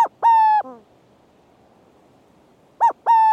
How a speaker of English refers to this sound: And let's not forget the burrowing owl.